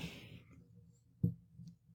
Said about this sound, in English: Anyway, I've got to bring up pliers down here and get a little more aggressive on this one key. But, so you're adjusting the keys on the mic. Actually, it's a Rode studio arm, so it's really cool.